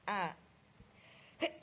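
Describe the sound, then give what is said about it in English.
A single loud sneeze bursts out at the start, followed by a quiet pause and then a brief voiced sound near the end. “Excuse me. Gesundheit.”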